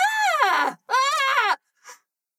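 Two loud, high-pitched screams of surprise burst out back to back from two roommates in a bedroom in the morning, one just woken on her pillow, followed by a brief, faint vocal sound before silence.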